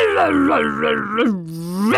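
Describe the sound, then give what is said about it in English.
A furious dragon gives a loud, drawn-out roar, rising and falling in pitch over about two seconds, with a growling, groaning quality that sounds like a human voice imitating it, with no speech. “It roared. They could hear now it was becoming more and more furious.”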